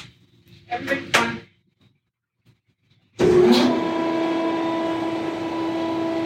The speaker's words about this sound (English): Okay, so we often talk about, you know, the kind of stuff used for shifting and everything, and I thought I would just let this play out so you can actually hear what it sounds like when two hippos get released onto exhibit.